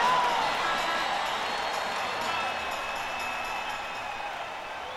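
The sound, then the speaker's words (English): A concert audience cheers for saxophonist Thaddeus Richard as he is introduced, in a steady, dense roar that holds for several seconds, with a thin whistle rising briefly above the crowd noise. “Give him a real big cheer, he loves to hear it.”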